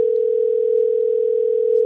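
A phone's ringing tone sounds as a call is placed to a guest, one steady electronic hum held at an even pitch for about two seconds, loud, with no voices around it.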